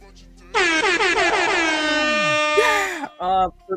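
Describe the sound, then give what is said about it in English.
A loud, blaring air horn sound effect sounds in a sustained burst of about two and a half seconds with a wavering, pulsing pitch, followed by a couple of shorter honks. “Can we do the air horn?”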